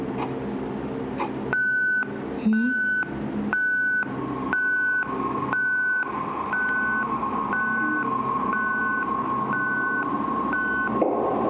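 A hospital patient call bell beeps steadily, high-pitched and evenly spaced, about ten times over a constant low hum at 3 o'clock in the morning, with no one speaking.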